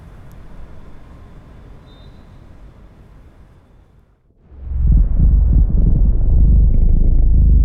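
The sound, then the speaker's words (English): A steady low rumble swells suddenly into a loud, deep roar, like an airplane engine, which holds strong and unbroken to the end with no talking. “And now, also, have this plane.”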